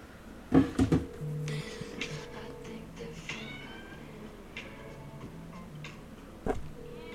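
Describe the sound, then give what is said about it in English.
A phone ringtone made of cat meows plays for an incoming call, with a couple of loud meow bursts near the start and another later, over a steady tonal electronic hum and faint background noise. “I want them to hear my ringtone for you.”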